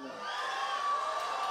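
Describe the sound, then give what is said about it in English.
A crowd cheering sound effect: many voices cheer and whoop in one steady, dense roar, holding at an even loudness for a second and a half with bright, high-pitched shouts mixed in. “This is the cheer.”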